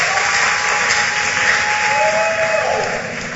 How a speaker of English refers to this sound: In the name of Jesus. Clap your hands and sit down.